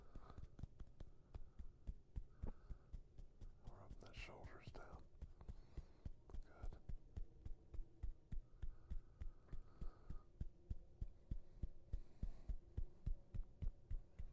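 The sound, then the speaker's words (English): A passing train rumbles low and steady, with a rapid, regular clacking rhythm running throughout and building slightly toward the end; faint voices murmur briefly in the middle. “Got a little train action going.”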